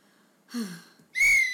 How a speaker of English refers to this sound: And there goes the whistle.